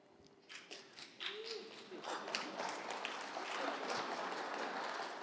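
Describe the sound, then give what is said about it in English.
Applause from a crowd starts as scattered claps and quickly swells into a dense, steady wash of clapping that holds at an even level to the end, with no voices. “And when she's clapping, I'm happy.”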